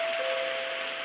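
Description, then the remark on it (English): A doorbell at a house's front door, rung by a visitor, sounds one continuous buzzing tone, held steady for about a second over a wash of hiss. No voices are heard. “Gee, what a ring.”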